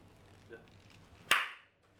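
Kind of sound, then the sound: human body sound, single hand clap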